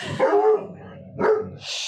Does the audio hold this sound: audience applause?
no